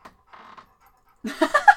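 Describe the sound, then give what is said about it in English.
Pet dogs bark at each other in a burst of loud, high-pitched yaps, four or five in quick succession, following a mostly quiet stretch with a few faint sounds. “Our dogs like to, you stop. Yell at each other.”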